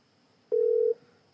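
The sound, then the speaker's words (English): A phone ringback tone while calling someone who does not answer: one short, steady electronic beep of about half a second, clear, with quiet before and after and no voices. “Come on. Answer your phone.”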